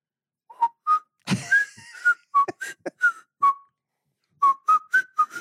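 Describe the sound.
Someone whistles a short tune, clear notes that rise and fall in a bouncy rhythm, with a brief breathy rustle partway through and a pause before the melody resumes.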